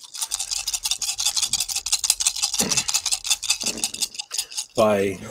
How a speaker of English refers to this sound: Okay, you're going to roll some dice on that one.